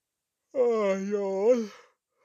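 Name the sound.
a yawn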